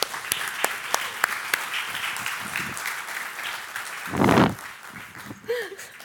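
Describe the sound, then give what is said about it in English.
A crowd applauds steadily for a woman invited up to share her three-word testimony, a dense wash of many hands clapping with sharp individual claps standing out, briefly swelling louder near the end before tapering off. “So will you give your applause for my friend”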